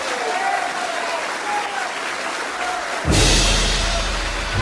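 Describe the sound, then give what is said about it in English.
An audience applauds as Minister Malcolm X is brought on, with dense, steady clapping that fills the whole clip, then abruptly swells louder about two-thirds of the way through and carries on at that fuller level. “Let us bring him on with a round of applause.”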